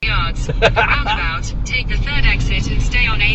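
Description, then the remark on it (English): Steady road rumble and engine drone from inside a moving car coming back from a beauty advisor course with Avon, continuous throughout, with a person talking over the noise. “Well, as you can hear, we're in the car coming back from the beauty advisor course with Avon.”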